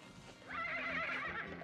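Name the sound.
horse neighing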